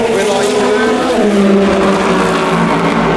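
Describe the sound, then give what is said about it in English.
Race cars roar past on the start-finish straight at the Le Mans 24 Hours at 12:45 in the morning, heard from right by the line. It is a loud, continuous engine drone with layered, high-revving harmonic whine that holds steady for the whole stretch. “It is 12:45 in the morning at the Le Mans 24 Hours, and we've come down to one of our favourite things, as you know.”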